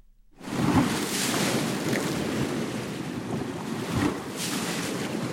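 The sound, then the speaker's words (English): Adriatic Sea waves wash against a rocky shoreline along the coast near Rovinj, Croatia, swirling among the rocks in a steady roar, with surges swelling at intervals and a breezy hiss throughout. Recorded by Eric Lacasa. No one speaks. “Eric Lacasa composed this piece from recordings he made of waves hitting the shoreline and swirling in rocks along the coast near Rovinj, Croatia.”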